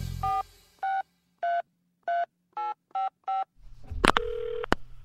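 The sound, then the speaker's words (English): A phone number being punched in on a touch-tone keypad to call the main number for Yale: seven crisp, evenly spaced beeps of varying pitch, followed by a burst of line noise and a click as the call connects. “And so we just called up the main number for Yale.”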